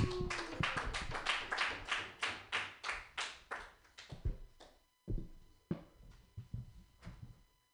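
An audience claps for a performer being introduced, in a fast, steady rhythm of sharp, loud claps that loosen into scattered, uneven claps toward the end. No cheering or voices stand out.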